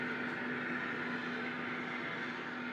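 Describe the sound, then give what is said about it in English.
The sugar beet factory in Torrington, owned by Western Sugar Cooperative and running since 1926, hums steadily in its busy season with a constant low mechanical drone, a sustained tonal whine running underneath and a broad wash of machinery noise, unchanging throughout with no voices. “Now is the busy season for the plant, and you can hear it hum.”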